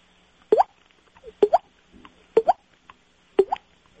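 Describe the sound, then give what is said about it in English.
Water dripping sound effect, played by a comedian for laughs: four clear, evenly spaced drops, each a short plop with a quick upward-bending pitch, falling about once a second with nothing else around them. “I can do things like, here, I got all kinds of sound effects I can throw in. I got water dripping.”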